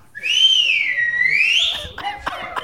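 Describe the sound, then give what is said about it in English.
A woman's loud whistle holds one long note for nearly two seconds, dipping and then rising in pitch before breaking off into a few short bursts of noise. “Have you heard her whistle?”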